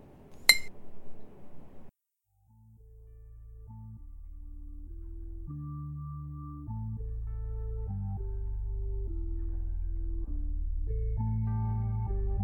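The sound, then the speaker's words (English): A single bright glass clink rings out at the start over a brief soft pouring-like rush as a glass is refilled, then a steady, sustained music track fades in and carries on alone. “Here, refill your glass.”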